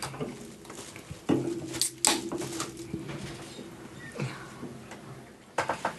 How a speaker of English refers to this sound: We're going to have a little bit of dead air while we're pouring beer.